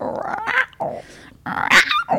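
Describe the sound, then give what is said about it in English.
A person imitates a cougar's growl with a few loud, raspy, snarling bursts, separated by brief pauses. “Cougar growl.”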